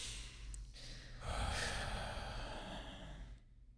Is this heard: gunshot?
no